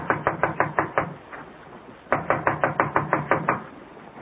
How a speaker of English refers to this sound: This looks like Connie's apartment. I'll knock on the door.